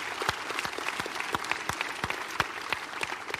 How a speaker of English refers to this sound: Amen. And really a hand clap for everyone. We're so glad that you're part of this church.